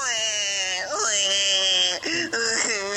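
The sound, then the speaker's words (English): A pre-recorded clip of a child wailing and sobbing, played from a phone: long, high, strained cries with sharp pitch swoops and brief catches for breath, the sound thin and bright through the phone's small speaker. “I don't believe that's your son. That's a pre-recorded thing.”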